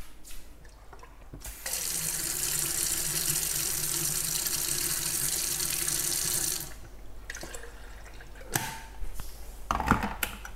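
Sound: water running from tap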